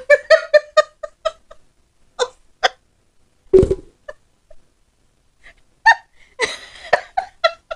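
A voice imitates a cat with a rapid run of short, high meows, then scattered squeaky mews, one sharp breathy burst midway and a louder cluster of meowing cries near the end, clear.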